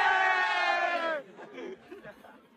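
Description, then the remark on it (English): A loud group of men around the fireplace in a pub chants together in one long, sustained, rough shout, then breaks off abruptly into lower, scattered chatter and murmuring. “I went back to concentrating on colouring inside the lines, until the noise emanating from the men around the fireplace drowned everything else out.”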